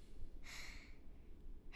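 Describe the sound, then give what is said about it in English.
One sharp, breathy sneeze bursts out about half a second in, loud, fading quickly into a quiet hum with a brief rustle at the end. “Bless you. Bless you.”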